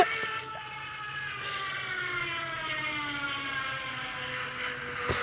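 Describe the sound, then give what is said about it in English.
An epic fail sound effect: a sustained, harmonically rich wailing tone that slowly slides downward in pitch, holding steady in loudness for about five seconds with no talking. “At first, I thought it was a guy screaming. Okay. That's called Epic Fail.”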